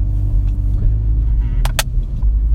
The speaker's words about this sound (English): Look, dude, the fire department. Their car is so cool. It's a fire fuck. Fire trucks are actually kind of epic, dude.